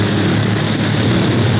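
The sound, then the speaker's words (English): A loud propeller plane engine roars steadily as the plane noses down into a dive toward another plane ahead, a dense droning rumble with a low buzzing hum underneath, filling the whole short stretch with no voices. “Clint's getting ready to dive.”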